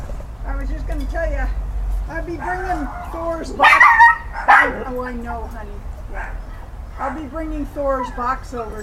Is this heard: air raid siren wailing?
no